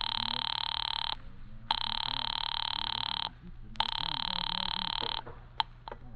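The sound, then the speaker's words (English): A telephone ringing over the line on a call to an office, in long, steady bursts separated by short pauses, bright and insistent, with low murmuring voices faintly audible beneath. “Ringing Murray Hill 40098.”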